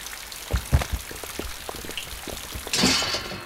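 Steady rain patters outside, heard through an open door, with scattered heavier drops tapping and a brief louder rush of water toward the end. No one speaks.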